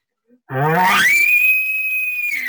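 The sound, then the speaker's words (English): A person imitates a bull elk roundup bugle, not a challenge bugle: a low, raspy growl climbs quickly into a long, steady, high-pitched whistle, one loud call held for about two seconds. “you know, when you start doing things like a Roundup bugle.”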